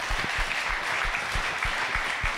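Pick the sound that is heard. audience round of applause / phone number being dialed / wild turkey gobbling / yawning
audience round of applause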